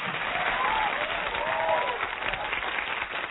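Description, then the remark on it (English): A crowd applauds steadily as a song is introduced on a radio show, a dense wash of clapping that holds at an even loudness throughout, with faint rising cheers or whistles sliding over the top. “Let's get some hands together, gang,”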